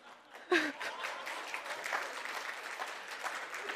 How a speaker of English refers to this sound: Well, I wasn't expecting the clap, but that's all right. I'll take it.